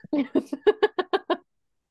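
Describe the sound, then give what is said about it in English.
A voice imitates a bird chirping with a quick, rhythmic string of about eight clipped, tuneful syllables, fairly loud, then stops abruptly into silence. “Yeah, what bird is chirping? It's the midnight bird.”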